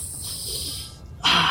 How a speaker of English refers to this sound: He rubs his hands together and kind of takes a sniff of it.